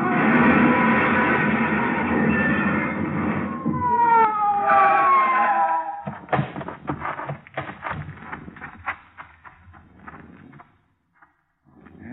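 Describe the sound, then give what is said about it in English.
A police car siren wails in rising and falling sweeps over loud roaring engine noise as the car chases another car along a curving road, then gives way to a series of sharp clattering knocks and bangs. “Whoever it was paid no attention to our siren, but we pulled closer, hugging the curves by using the whole road.”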